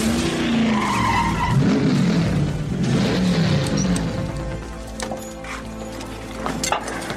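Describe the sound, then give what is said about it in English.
A stock car's engine roars loudly, its pitch climbing through repeated gear shifts as it accelerates, with tires squealing and skidding as it tears around the track on a timed lap of 31 flat. “That was fast. Yeah? 31 flat. That's good enough to take the pole in the last race here.”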